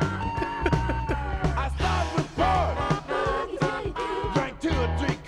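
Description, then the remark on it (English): A bluesy rock recording plays loudly and continuously, with steady drum hits and a full band under a man's raw, shouted vocal that sounds more like yelling than singing. “He's not really singing with any cadence. He's just kind of yelling.”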